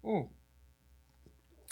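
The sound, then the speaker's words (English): A quiet sip from a drink, with soft swallowing and wet mouth noises. A brief voiced murmur comes at the start and a short breathy rustle at the end. “One more sip.”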